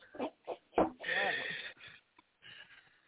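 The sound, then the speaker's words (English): A bird calls: a few short, sharp squawks, then a longer raspy, warbling cry, trailing off into softer scattered chirps. “People's music, and let the bird tell us if he likes the song or not.”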